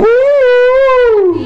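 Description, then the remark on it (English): A single loud, sustained howl from a human voice mimicking a wolf as a Wolfman, rising slightly then sliding down in pitch over about a second and a half. “Look, when you're a wolf, I go, and then my other wolf kind comes.”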